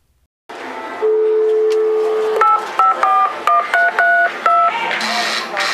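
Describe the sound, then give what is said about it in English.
A steady dial tone gives way to a quick sequence of about eight touch-tone beeps as a number is dialed, each short dual-pitched chirp clear over a faint, noisy background hum; audio from a phone in the Disney parks, calling the Intergalactic Movie Line. “you'll hear a series of different calls that come in”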